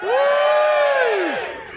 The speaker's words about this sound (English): and welcome to the second half, or if you're listening at home, part two of the Monkey Tennis Live Alpha Papa special, recorded live at the Prince Charles Cinema in Leicester Square, London, where our audience will now make a short amount of noise.